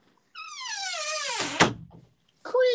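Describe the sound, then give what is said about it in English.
A door creaks open with a long, drawn-out, falling squeal, ends in a solid thunk, then a brief second squeak starts up. It is clear, with no talking. “Creak!”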